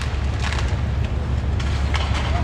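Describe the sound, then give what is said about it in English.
Wood crunching and splintering as the RISE Doro apartment building in the downtown stadium district is demolished: a steady, heavy low rumble broken by irregular sharp cracking bursts, fairly loud, with no voices. “The crunching sound of all that wood and what remains of the RISE Doro apartment building in the downtown stadium district.”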